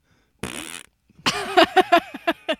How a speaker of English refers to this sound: Farts will never not be funny. You can't grow out of them.